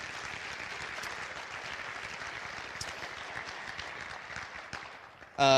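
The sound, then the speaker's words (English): An audience applauds steadily for young singers who shared the gospel through song, a dense wash of many hands clapping at an even level for several seconds before it cuts off into a brief louder burst at the end. “You blessed all of us today. Let's hear it one more time.”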